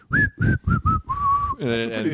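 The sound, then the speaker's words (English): Someone whistles a slow, mournful tune: four short notes followed by a long, drawn-out falling note, then a voice comes in briefly at the end. “I can't whistle that well.”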